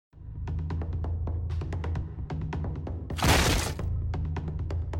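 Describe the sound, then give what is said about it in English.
A door being kicked in: a string of sharp cracks and thuds, then a loud splintering crash about two-thirds through, more clattering hits after, over a steady low hum with no talking. “You need to think of a great one-liner for when you kick in the door.”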